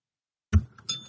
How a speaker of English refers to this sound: Where did that bell come from? Was that Santa Claus getting his wings? No. Mike just has a bell right by his microphone. Anytime you say iconic.